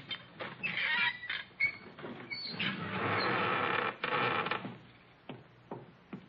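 A heavy secret door into the Sheik's room creaks slowly open, a long strained groan broken by a few sharp clicks and knocks, heard alone without voices.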